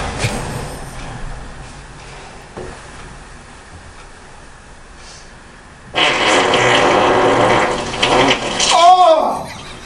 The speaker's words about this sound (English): This one's called, what did I call it? Pool Fart.